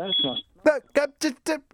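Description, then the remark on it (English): A single shrill smoke alarm beep sounds briefly over a muffled voice heard faintly through a phone line, followed by several short bursts of talking. “He moans that the last few times he's been on, he's been given very short shrift, and then he sets off some sort of smoke alarm down my phone, right in your house, right in your radio.”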